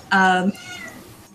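A single loud, drawn-out meow from a male pet cat, steady in pitch for about half a second before ending with a slight upward twist, followed by quiet background noise.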